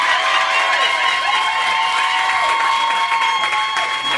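A crowd claps and cheers steadily for several seconds to vote by applause, a dense wash of applause with high-pitched shouts and whoops riding over it, staying loud throughout.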